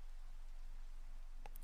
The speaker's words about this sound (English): Finally, the clicking of the analog clock returned,